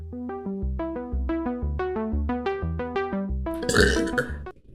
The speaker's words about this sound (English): Burp, and we're back. And all right. Burp.